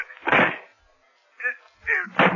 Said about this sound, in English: Carpenter, we know you're in there. This door is locked from the other side, Faraday, so we can break it down.